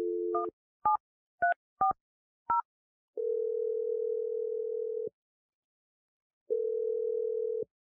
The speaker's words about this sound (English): All right. Here we go. I'm going to dial the number and let you make your call.